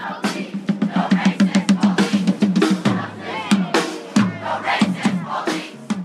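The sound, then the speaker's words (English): A crowd of student protesters outside a store chants a slogan to boycott Gibsons in unison, loud and steady, with a rapid rhythmic beat of syllables, several shouting voices rising above the group between phrases. “And they just were chanting to boycott Gibsons, and they had signs that said, boycott Gibsons, we were racist.”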